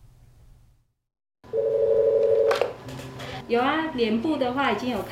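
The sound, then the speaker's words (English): A telephone rings at a spa reception desk with a steady electronic tone lasting about a second, fairly loud, then a person starts talking over a low background hum. “The phone is ringing off the hook for this spa receptionist.”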